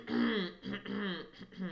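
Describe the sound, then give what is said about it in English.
A person clears their throat, several raspy, voiced rumbles strung together in quick succession, fairly loud with no talking around them. “I really am truly clearing my throat, and that freaks people out when I do it.”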